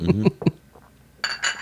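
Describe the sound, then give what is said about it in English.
A brief voice comes first, then two bright, ringing clinks of cups tapped together in a toast, each a sharp metallic-glassy strike with a short shimmering tail. “Clink, clink.”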